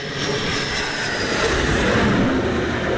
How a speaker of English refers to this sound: The sun sets over the Arabian Gulf, a US Navy jet returns from a seven-hour mission over Syria. The sharp end of America's air war on Islamic State.